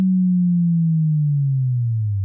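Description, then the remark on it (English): A pure, smooth sine tone, used as the basic wave of a designed sound effect, glides steadily downward in pitch over about two seconds, starting low and sinking into a deep hum, heard alone at a steady moderate level. “The fundamental of most bouges are made by some sort of basic wave, a common choice being a sine wave, which has no harmonics. Then you give it a nice smooth pitch down.”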